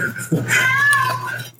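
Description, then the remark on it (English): A single drawn-out cat meow, fairly loud, holding a steady tone for about a second before trailing off, with faint background noise underneath. “Is that your cat that I just heard?”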